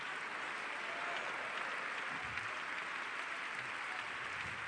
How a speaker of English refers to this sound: Would you put your Bibles down, clap your hands, and shout, God bless the word.